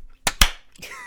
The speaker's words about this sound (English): That was a clap thing right before, you know, they start filming. It's like, all right. Scene one, take one.